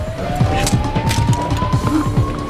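A police siren wails in a thin, steady tone that slowly climbs in pitch, riding over a busy bed of low rumbling, rhythmic thumps and scattered clattering noise.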